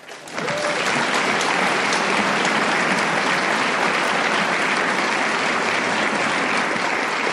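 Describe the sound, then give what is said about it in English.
Sustained applause from an audience at a recovery group meeting, given to a speaker who has just finished sharing: a dense, steady wash of many hands clapping, rising quickly at the start and continuing evenly without any talking. “Let's give Paula another round of applause.”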